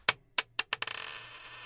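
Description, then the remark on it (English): A coin flipped in a coin toss lands and bounces in a quick series of bright metallic clinks that speed up and shorten, ending in a fast shimmering rattle as it spins down and settles. No voices are heard. “You're going to call it in the air.”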